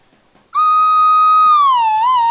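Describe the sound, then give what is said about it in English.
A slide whistle blows one loud, sustained note for about two seconds, holding steady before dipping slightly and wavering near the end, with no other sounds. “I never thought I'd say this, but I actually prefer the slide whistle to that stupid African horn.”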